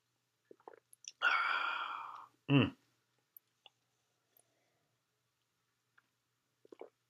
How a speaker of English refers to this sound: I have poured my big glass of red wine, which I feel is only appropriate to doing a reading from a vampire novel. Now I'm going to have a big sip of it.